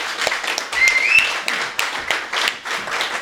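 A crowd applauding steadily, dense overlapping claps forming a continuous wash of sound, with a couple of high whistles cutting through early on.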